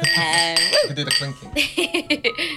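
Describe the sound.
Glasses clink together in a toast, several bright ringing taps mixed in with overlapping voices and cheerful exclamations.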